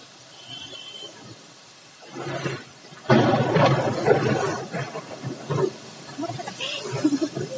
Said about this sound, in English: Another thunder. That was loud, really loud. Oh my gosh. Whoa, amazing.